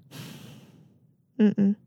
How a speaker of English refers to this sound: Are you breathing into through your nose onto the mic?